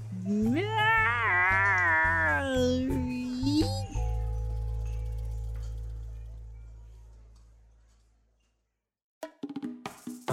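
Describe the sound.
A person makes a clumsy, drawn-out attempt at a cat meow lasting a few seconds, its pitch wobbling up and down over a steady low hum that fades out before a brief burst of talking.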